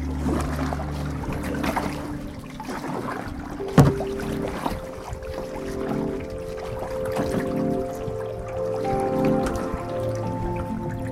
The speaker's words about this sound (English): Now we're here on the dock listening to the water ripple its little waves.